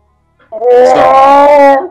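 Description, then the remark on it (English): Chewbacca growls in one loud, sustained cry of about a second and a half, a throaty, warbling moan that rises and holds before cutting off. “Plus one. Chewbacca growls.”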